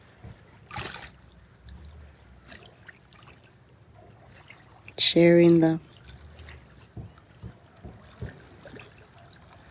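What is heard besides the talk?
trickling water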